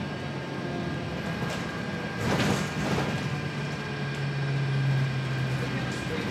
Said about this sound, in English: I'm here. This is the stop, the 56 bus stops right a few blocks from my street.